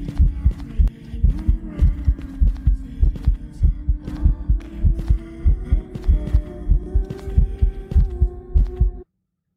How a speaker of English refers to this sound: So, this is from a game. That's your first hint. I could tell by the heartbeat.